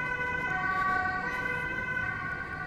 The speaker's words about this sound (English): What's happening? That's an ambulance. A very noisy ambulance.